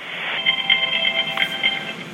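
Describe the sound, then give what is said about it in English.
A man's other phone rings as his wife calls, a bright electronic ringtone with a quick pattern of repeating high beeps sustained across the whole moment at moderate volume, with no one talking. “That's my wife calling on my other phone. We'll just have to wait till this stops ringing, and then I'll pick it up again.”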